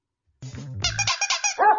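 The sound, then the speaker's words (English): A beagle gives a low rumbling growl, then breaks into a quick run of loud, high-pitched barks ending in a drawn-out baying yelp, with no talking. “She's a Beagle, a breed that everyone recognizes as a great addition to the family.”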